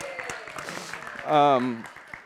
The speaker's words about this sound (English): Oh, she's watching. She's watching. Did you hear the claps, Annie? We're clapping for you.